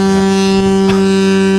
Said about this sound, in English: Sorry, it's a ship, not a boat. There it is. There we go.